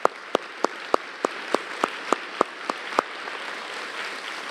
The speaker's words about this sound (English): if you wouldn't mind standing up, I'd like to clap for you.